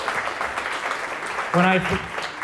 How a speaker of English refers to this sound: So huge round of applause